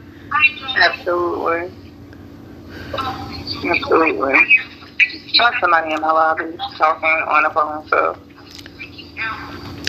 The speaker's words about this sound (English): I got somebody in my lobby talking on the phone, so I hear somebody.